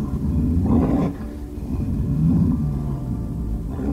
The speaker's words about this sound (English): A guttural roar swept across the grass. Bridger roared back.